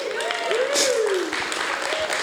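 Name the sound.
audience applause and cheering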